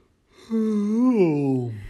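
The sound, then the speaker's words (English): A drawn-out human yawn lasting over a second, a voiced rising-then-falling groan that trails off into a low breathy exhale. “I'm so thankful you listened to me because not only did I just yawn in your ear, but because I talked to you, I just yawned.”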